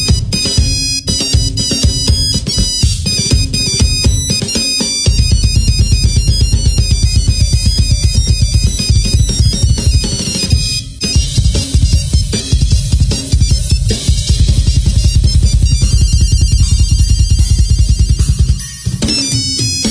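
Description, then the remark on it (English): Old mobile phone ringtones play as a loud, continuous stream of bright, beeping synthesized melodies stacked over a steady pulsing beat, with no voices, briefly cutting out around the midpoint. “So if you happen to have an old phone and you watch the whole video is like 3 minutes long.”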